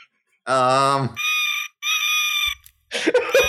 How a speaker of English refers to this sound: It's a red panda. What? Yeah, this is the sound that they have a red panda pen making. No, it's not a red panda. I mean, that is kind of a red panda noise, I'll be honest. That's a terrible sound, by the way.